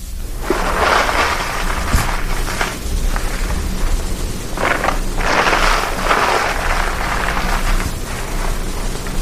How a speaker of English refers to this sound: First, I lay a fire in the fireplace. I pride myself on the way I lay a fire. To begin, I crinkle newspaper to put under the grate.